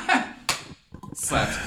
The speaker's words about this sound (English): slaps table.